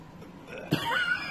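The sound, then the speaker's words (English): A single short, sharp cough, a quick burst rising out of quiet background noise with no talking around it. “No, I just have a cough.”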